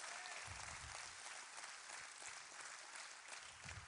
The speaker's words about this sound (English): God wants to release the oil of joy. If you believe that, give God a hand clap right there. The oil of joy.